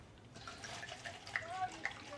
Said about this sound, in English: Being a little generous with it, you don't pour all the wine out.